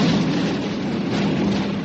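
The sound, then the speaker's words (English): A steady, heavy roar of hundreds of massive logs crashing and rolling down a river and piling headlong into a barrier, a dense rumbling wash with churning low-end thuds that stays loud and unbroken throughout, with no voices. “Ralph's warning cry is almost drowned out by the crashing thunder of hundreds of massive logs rolling down the river, piling headlong into the barrier set by Matt Gulden.”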